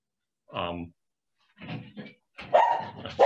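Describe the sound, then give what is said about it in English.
A dog barks in three short bursts, fairly loud, with brief pauses between them and the last bark the loudest, as the mail is delivered. “My dog, I'm sorry.”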